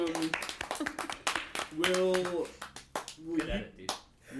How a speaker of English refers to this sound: Why did we sit quietly for? Yeah, why that time? Why were we ever not clapping all the time?